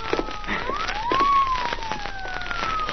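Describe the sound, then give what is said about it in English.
A police siren wails in slow rising and falling sweeps, fairly loud and steady over a crackly, noisy background, seeming to draw closer with no voices present. “Yeah, listen. Police car.”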